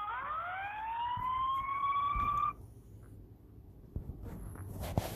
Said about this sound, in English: Yeah, I can't hear you with all the sirens. Wait for the sirens to go past and shit.